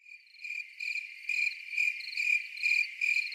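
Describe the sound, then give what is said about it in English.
A cricket chirps steadily, its shrill high-pitched trill pulsing in a regular rhythm of about two bursts per second, fairly faint and alone with no voices. “Ryan, put a cricket sound into this when you do the editing.”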